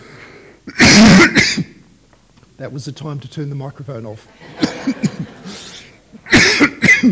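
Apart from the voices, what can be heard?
coughing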